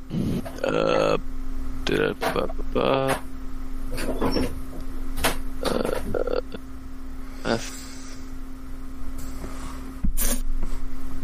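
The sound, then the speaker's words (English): A loud burp rumbles out among several other short throaty bursts and clunks, over a steady low electrical hum. “Burp.”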